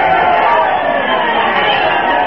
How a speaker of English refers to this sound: A cheer for Mayor Applepuss, folks.